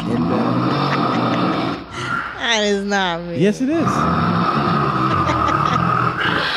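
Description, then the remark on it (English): A short burst of a man's snoring, recorded at night on a phone, one rough, rattling snort lasting a second or two, plays through the phone's small speaker between two people talking over steady background noise. “That's you. Snoring.”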